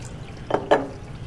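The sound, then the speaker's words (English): Two brief, soft watery sloshes a quarter second apart, as food cut into little cubes is pushed into shallow water, with a low background hum and no talking. “We'll see if we can move it into this water here a little bit.”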